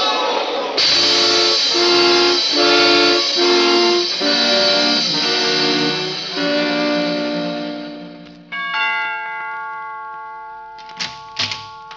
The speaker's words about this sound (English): Look out. There's a train coming. Look out.